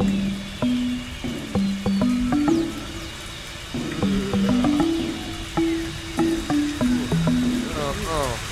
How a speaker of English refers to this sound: Time for the old morning shower. Oh, Jesus, cold again.